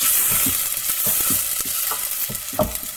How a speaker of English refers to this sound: You're frying that garlic onion and chili. Is in the pan with a bit of olive oil. Ooh. You've absolutely nailed it, although there was bay leaves in there as well.